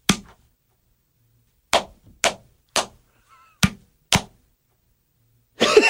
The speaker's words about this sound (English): Okay, you do yours first. Okay. Slap to the gut.